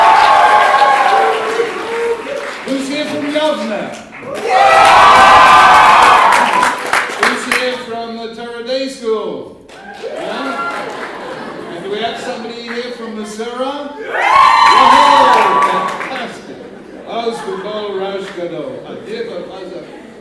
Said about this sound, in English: And so tell me, who is here from Akiva? Can we hear a loud roar, please? Yeah.